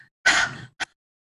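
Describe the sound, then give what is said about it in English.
A person imitates a dog's panting with the tongue out during a yoga breathing exercise: a long, forceful open-mouthed huff followed by a quick short one, fairly loud with no talking. “Go ahead, and now we're going to, so stick your tongue out and breathe like you're panting like a dog.”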